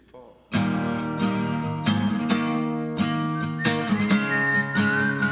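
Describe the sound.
A whistled melody rides over a full band playing a song intro, with steady drum hits and strummed chords kicking in loudly after a brief quiet start.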